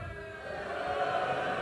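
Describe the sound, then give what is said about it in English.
An audience boos a performer's dad together in a steady, sustained low drone of many voices, holding at an even loudness through the short moment with no clear words. “Oh, no, they're booing.”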